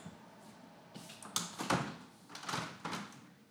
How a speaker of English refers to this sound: And wait, I'll close this door.